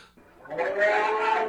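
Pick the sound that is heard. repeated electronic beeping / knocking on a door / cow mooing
cow mooing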